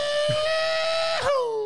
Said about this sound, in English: Sorry, just giving it that old rebel yell.